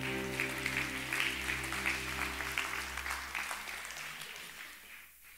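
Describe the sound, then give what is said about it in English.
A church audience claps their hands for the Lord in a dense, steady roar of many overlapping claps for about five seconds, tapering off at the end, while sustained low instrumental chords hum underneath. “Come on, let's give the Lord a hand clap.”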